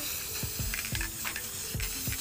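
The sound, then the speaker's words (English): A shaken aerosol spray paint can with a jammed lid sprays paint over a stencil in an uneven, sputtering hiss, broken by several soft low pops and bursts as the spray falters. No one speaks. “Spray paint's struggling a little bit.”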